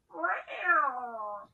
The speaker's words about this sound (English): And as always, we're filmed in front of a live studio audience of loud kitties.